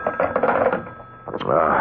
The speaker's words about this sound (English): What? Oh, it's a phone.